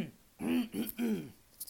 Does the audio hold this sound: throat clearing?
yes